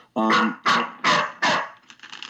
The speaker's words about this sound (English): Hey, no, that's Harley. She barks a lot.